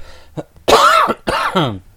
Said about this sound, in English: We're both coughing still. Bad.